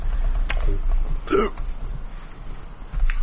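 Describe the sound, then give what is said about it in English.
A few sharp plastic clicks at irregular intervals as a masterpiece toy saber is handled, with a low background hum and no talking. “With all the gold chrome and the characters turning into armor for other characters, I had my masterpiece saber within arm's reach, so that's what all the clicking noises are.”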